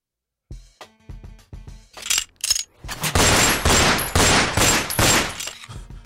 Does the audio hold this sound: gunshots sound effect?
yes